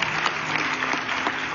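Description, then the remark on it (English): An audience claps steadily in response to the announcement that its team ministries begin today, many hands overlapping into a dense, bright wash of applause with a few sharper individual claps standing out, sustained at an even level throughout. “Yeah, y'all clap on that if you want.”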